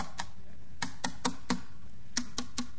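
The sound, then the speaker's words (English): Sharp, irregular taps sound over a loudspeaker set up for men waiting in line for job interviews, about eight bright clicks in uneven groups, like keys being struck, with a low hum underneath and no voices. “And over the loudspeaker, all of the men in line, they heard this tapping noise.”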